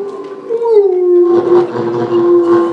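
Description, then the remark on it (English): A voice imitates a whale call with a long, drawn-out moaning tone that slides downward in pitch, then holds steady and wavers, loud, with no other sounds. “You hear it? It sounds just like whale talk.”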